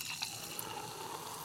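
Champagne being poured from a bottle into a glass, a steady, hissing rush of liquid with faint fizzing crackle and small splashes throughout, no voices.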